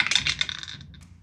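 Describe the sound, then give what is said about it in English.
Percentile dice clatter across a hard surface in a quick, bright rattle of tiny clicks that settles after under a second, followed by a couple of faint final ticks. No one speaks. “Oh, I gotta roll percentile dice for this.”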